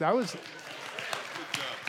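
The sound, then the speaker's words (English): A short rising-and-falling vocal whoop opens, followed by scattered, uneven claps from a small crowd, fairly soft overall, with a murmur of voices underneath. “You can cheer for me.”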